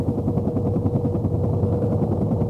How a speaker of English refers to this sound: This is an iconic sound. A sound that a generation of Americans could instantly identify. It's the rotary blades of a Huey helicopter.